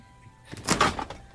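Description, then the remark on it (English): A freezer door is pushed shut in one quick motion, a brief rushing swish ending in a soft seal-like thud, with quiet room tone before and after. “Show your former seal when you shut that freezer door.”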